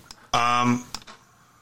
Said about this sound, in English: For starters, if you hear clicking, that's me clicking on my computer because, you know, I can.